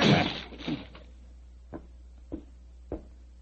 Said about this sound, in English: Open the door. Well, it's locked. Never mind that. Get your shoulders into it. Come on. Come on. Help me. Come on. One more.